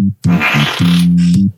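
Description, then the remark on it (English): A loud, low, buzzing fart that sputters out in a few short blasts before stretching into one long, droning rip, with a raspy hiss riding over it. “I got a fart. Hold on.”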